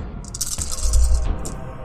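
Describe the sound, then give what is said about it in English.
Four chunky dice clatter and tumble across a hard surface, a brief rattling burst with clicks and knocks, settling after a couple of seconds. No one speaks. “Okay, so it's going to roll 4 chonky dice”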